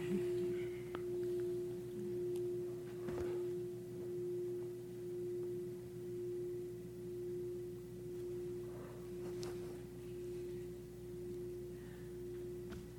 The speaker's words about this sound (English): Bell is an amazing sound.